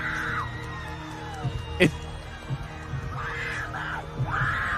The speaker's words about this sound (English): Dude, the scream in the background. Run it back.